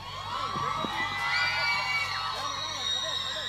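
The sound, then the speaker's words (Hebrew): A crowd of hundreds of people at a live show cheers and shouts continuously after being asked to make some noise, with overlapping high-pitched yells and whoops forming a loud, steady wall of noise. “חבר'ה, יש פה קהל, יש לך פה מאות אנשים.”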